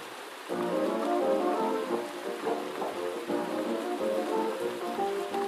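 Soft, steady night rain patters continuously, a gentle hiss that starts after a brief pause, with muffled oldies music playing faintly in another room.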